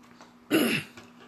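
A single loud throat clearing, a short rough rasp lasting about a third of a second against a quiet background with a faint steady hum.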